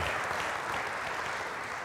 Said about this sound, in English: So let's give God a hand clap of praise for that.